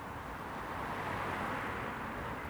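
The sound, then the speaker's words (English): A steady, continuous roar of road traffic, vehicles blending into one broad rushing hum, with no distinct individual passes and no voices. “The repetitious sound of the traffic has an uncanny knack of luring you into a false sense of security before spitting you straight back out with some violent industrial thud.”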